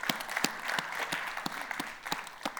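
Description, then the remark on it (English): A huge round of applause from a crowd for a group of people, many hands clapping in a dense, steady patter with sharper individual claps standing out, sustained at an even, moderately loud level throughout. “I think it would be really appropriate if we all just gave these people a huge round of applause.”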